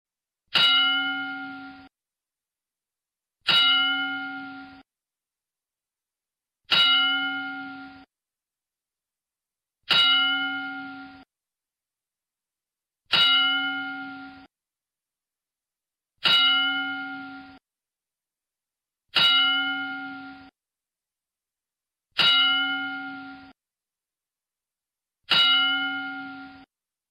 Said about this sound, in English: Can we pay our tributes to Shannon Spruill, Daphne, and our 10 bell salute, which I hate doing these, but we got to pay tribute.